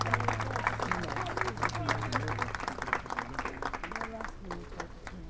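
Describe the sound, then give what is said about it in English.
A crowd applauds steadily for Tamisha Torres-Walker, dense overlapping claps filling about five seconds, with murmuring voices underneath and a low steady hum during the first half. “Let's give another round of applause for Tamisha Torres-Walker.”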